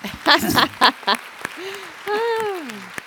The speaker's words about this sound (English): All right, big round of applause for our video king and queen.